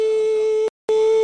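A steady, mid-pitched electronic beep tone sounds loudly, cuts out for a brief silent gap, then resumes at the same pitch and volume. No voices are heard.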